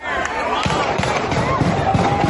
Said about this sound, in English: Gunshots and chaos erupted. Just moments after seniors from Huguenot High School and their families left a graduation ceremony in Richmond, Virginia, Tuesday.